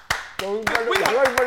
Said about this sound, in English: Can we give a round of applause for my dog?